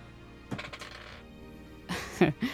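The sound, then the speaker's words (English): Dice clatter across a hard table in two quick bursts of rattling clicks as players roll charisma saving throws, a short tumble near the start and a busier, louder series of bounces toward the end, with faint background between. “This dice is going to jail.”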